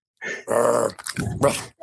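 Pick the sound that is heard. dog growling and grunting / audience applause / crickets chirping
dog growling and grunting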